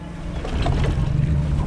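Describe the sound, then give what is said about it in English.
A boat's engine rumbles low and steady, swelling louder after a moment as the vessel gets underway, with faint water and wind noise around it and no voices. “Then the boat leaves.”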